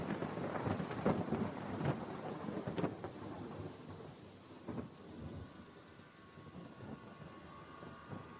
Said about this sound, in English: Well, the rain was heavy. The rain was very heavy. Heavy rain, but coolish. Coolish rain. Cool rain.